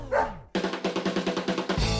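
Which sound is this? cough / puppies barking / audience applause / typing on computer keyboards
puppies barking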